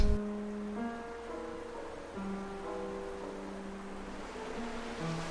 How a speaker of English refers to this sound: And for me, this walk just physically performs that for me in my mind, so that I'm addicted now to that moment where the three forces of water meet, and it feels as if I can do this walk, I can get through any poem and reach its ending.